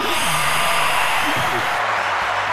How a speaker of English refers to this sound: Canned laughter. Yeah. Canned applause, rather.